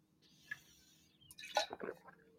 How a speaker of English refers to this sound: And let me get a drink of water real quick.